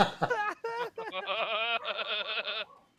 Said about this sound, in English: See, the dog agreed. You hear that?